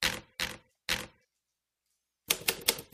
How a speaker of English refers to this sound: And now we're all writing. Now I'm typing.